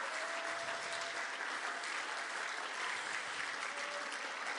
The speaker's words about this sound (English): Oh, is there anybody thankful for the church this morning? If you are, I'm telling you, stand to your feet, give the Lord a hand clap of praise if you love your church.